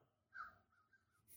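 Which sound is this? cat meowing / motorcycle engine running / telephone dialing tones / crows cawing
crows cawing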